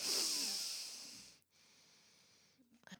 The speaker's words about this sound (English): Okay, that was the last sniffle into the microphone, I promise.